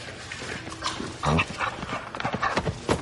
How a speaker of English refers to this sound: Is that the dog? He likes you.